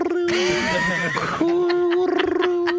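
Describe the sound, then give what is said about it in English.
A voice imitates a high, steady electronic sonar alert tone, holding one sustained buzzing pitch for a couple of seconds, then breaking into a quick warbling pulse near the end. “No, it's a sonar alert thing.”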